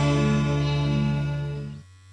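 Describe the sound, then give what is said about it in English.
A steady electric buzz from a Manscaped Lawnmower 4.0 body hair trimmer, with a low, harmonic-rich drone, runs for nearly two seconds, then cuts off abruptly, leaving a faint low hum. “you hear that? Mm-hmm. That's not my sister's vibrator. Aww. That's the new Lawnmower 4.0 brought to you by Manscaped.”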